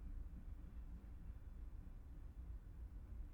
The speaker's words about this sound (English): And of course, here comes the train.